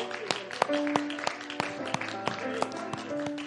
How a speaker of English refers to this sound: Would you give the Lord a big hand clap of praise tonight? God is good.